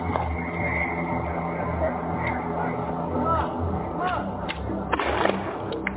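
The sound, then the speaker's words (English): Sharp cracks of rubber bullets fired by police officers into a crowd of protesters in America, a few isolated shots then a quick cluster near the end, over a constant murmur of crowd noise and indistinct voices. “As people protest, officers continue shooting in the crowd.”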